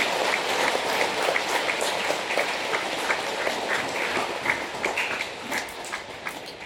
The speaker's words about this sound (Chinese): 让我们代表慈母教会再一次以热烈的掌声祝福他们，欢迎他们参加。